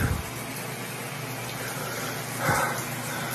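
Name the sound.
shower running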